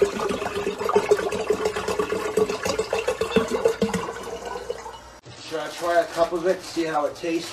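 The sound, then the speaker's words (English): Filtered bottled water rushes steadily for about five seconds as it is poured to fill a jar, fairly loud. Then the pouring stops and a person starts talking. “I don't like how he adds water to make it, to like fill the jar, but he's just watering it down.”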